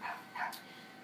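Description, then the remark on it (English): A dog gives two quick barks in fast succession, followed by a short higher yip. It is fairly quiet, with no one talking. “Crazy dog.”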